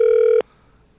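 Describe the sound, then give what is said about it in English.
A loud, steady electronic tone from a house landline telephone sounds alone for a fraction of a second, then cuts off abruptly into near silence. “This is gonna be his landline, guaranteed.”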